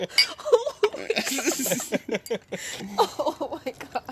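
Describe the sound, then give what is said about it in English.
A few bright glass clinks ring out in a toast over overlapping voices and a busy, chattering background. “Cheers to that. Cheers, guys.”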